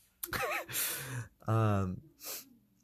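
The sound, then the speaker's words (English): A loud, theatrical sneeze: a wavering voiced intake, a hissing burst, then a strong, drawn-out voiced blast, followed by a short, breathy exhale. “I think I just sneezed out whatever thought I had coming in next.”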